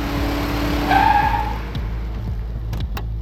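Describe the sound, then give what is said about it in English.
A hailed car, not a cab or rideshare, roars as it speeds off, with a high, wavering squeal of skidding tires for about a second before the revving motor carries on alone. “He starts driving like it's the last lap of the Long Beach Grand Prix.”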